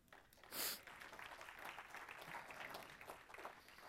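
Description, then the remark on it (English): An audience claps for God after a sermon, in steady, dense applause that carries on throughout, with a brief sharp burst of higher-pitched noise near the start rising above the clapping. “Gracious God, that applause is for you, because you are the sovereign God who gives us salvation in Jesus Christ.”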